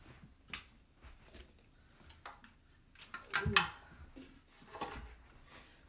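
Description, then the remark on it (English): A chair is pulled up, dragged across the floor with a short scraping squeal in the middle, surrounded by soft knocks and wooden clatter. The sounds are fairly quiet, and no one speaks. “Hold on, let me pull up a chair.”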